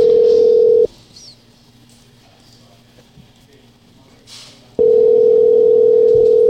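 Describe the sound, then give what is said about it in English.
An outgoing phone call to Junior: two loud, steady, mid-pitched ringing-tone bursts, one at the start and one near the end, separated by a long pause holding only faint background noise. “So we're going to call Junior and see how he reacts.”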